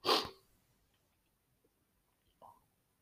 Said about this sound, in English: Feel like I'm going to sneeze again. It's sorry again, guys.